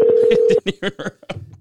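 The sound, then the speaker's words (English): As a phone call is placed, a steady telephone ringing tone hums for about half a second beneath a man's voice, then cuts off as he keeps talking. “we'll try reaching out to Jamie here once more. Get a call here.”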